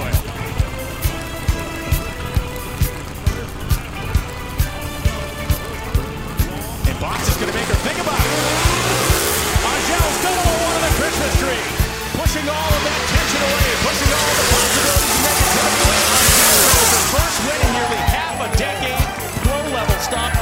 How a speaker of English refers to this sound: Chris Bostic is chasing win number one in the world of NHRA Pro Stock Drag Racing. And if the hair in the back of your neck isn't standing up yet, it might be in a minute.